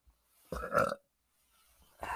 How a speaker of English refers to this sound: I feel a burp coming.